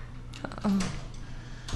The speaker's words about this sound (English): Yeah, we're in a house. Doors creaking. That's funny. No, these are bits. That's your sexuality closing. Yeah. We have a soundboard. That was on purpose.